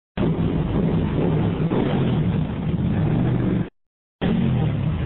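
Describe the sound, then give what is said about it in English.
A Ducati motorcycle with a Termigoni exhaust roars loudly and steadily in a parking garage, with a low, rumbling growl. It cuts out abruptly for a moment, then thunders back in. No voices. “Steffi has a fancy motorcycle exhaust. We're in a parking garage right now that really lets that sweet sound.”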